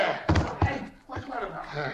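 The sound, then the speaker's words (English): Two heavy, dull blows land in quick succession, followed by a muffled thump, as three men knock the detective Nick Carter unconscious, with voices and scuffling sounds of a struggle around them. “Gosh, it took three of us to knock him cold.”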